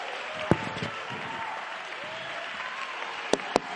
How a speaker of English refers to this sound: Keep standing, keep clapping, keep praising.